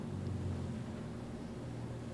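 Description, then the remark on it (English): A car rumbles past with a steady, low engine drone and road noise that holds at an even loudness, with no voices. “And a car drives by.”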